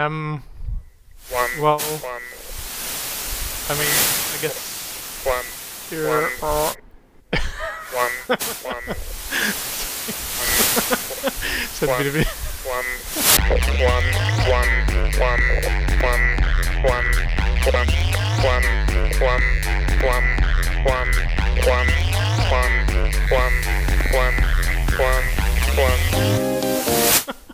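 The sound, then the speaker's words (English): Loud signal interference: crackling static and warbling tones give way midway to a heavy, throbbing low hum that pulses steadily under a dense hiss until the end. “Lost it. Just a bit of interference there.”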